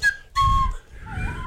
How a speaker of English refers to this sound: I whistle the other way.